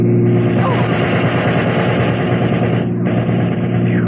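A car engine roars loudly and close by, a steady rumbling drone that dips briefly near the end before surging again as the vehicle rushes past.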